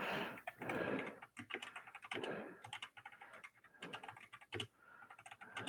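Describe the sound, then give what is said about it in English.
Rapid, uneven clicking of keys on a computer keyboard, fairly loud, with bursts of fast typing and brief pauses, no voices. “Yeah, the clickety clack on my keyboard.”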